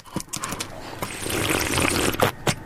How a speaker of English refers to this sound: So I'm going to have a little swig of water. This is my new slurp. It's not very exciting. Hang on, here we go.